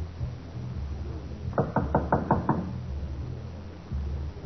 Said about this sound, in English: We're going to knock on the door. We might get bullets for an answer.